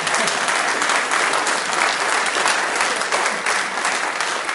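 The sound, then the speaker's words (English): Sustained applause from a group, a dense steady patter of many hands clapping at a fairly even loudness throughout, with no voices standing out above it. “And is that the applause from somebody?”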